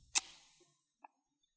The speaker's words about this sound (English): Here's an ASMR of scissors. You're laughing, it's ruining the experience. Scissor snaps.